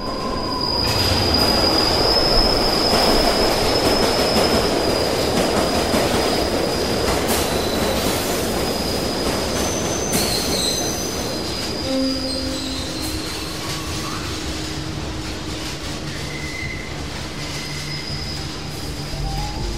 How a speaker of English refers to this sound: Just as the train is about to burst out of the tunnel, he steps up and pushes the other one right in front of the train.